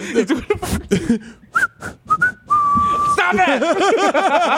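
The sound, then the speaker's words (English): Someone whistles the PC Richard store jingle by mouth, a few quick notes ending in a held tone, amid chatter, then loud overlapping voices take over. “You come home and it's just like WB Mason like blowing your girl's back out or PC Richard, but he's doing that whistle.”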